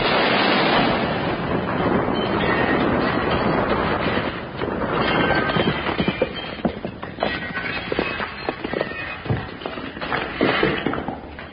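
A grenade goes off after its pin is pulled, with a loud, roaring blast that rumbles for a few seconds, then breaks into scattered clattering and crackling debris that fades unevenly.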